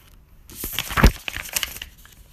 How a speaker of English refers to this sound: Why don't you open his present for you? It's right over there, wrapped in the dollar sign wrapping paper.